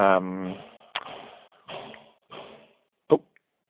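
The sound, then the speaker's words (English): A couple of sharp banging knocks on a cell door as someone tries to communicate through it, the last one loud and abrupt, amid short bursts of muffled voices. “the banging stopped.”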